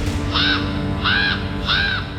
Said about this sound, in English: Above, the raven circled. Its calls reverberated in Sigmund's ears.